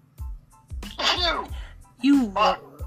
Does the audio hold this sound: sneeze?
yes